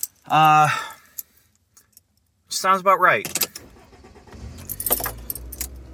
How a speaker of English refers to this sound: Okay, back in the car